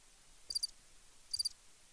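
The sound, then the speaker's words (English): Two short cricket chirps, each a quick trill of three or four high pulses, spaced about a second apart against a quiet, still background with no voices. “Crickets.”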